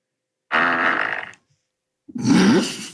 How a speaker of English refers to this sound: What was that? What was that? I think she farted. Was that you? That was a big one.